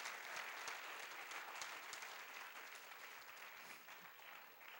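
An audience claps together, a dense, steady wash of many hands applauding throughout, sustained without pause or speech.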